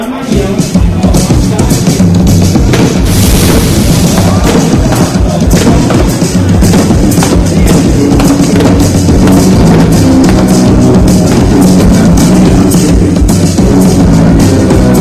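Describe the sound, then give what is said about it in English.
A loud, continuous barrage of fireworks exploding at the start of the inaugural Baltimore Grand Prix IndyCar race, with rapid overlapping bangs and thuds over a crowd's roar, sustained throughout without any break. “Race fans, after all the fireworks, it is our great privilege today to introduce you to our honorary starter.”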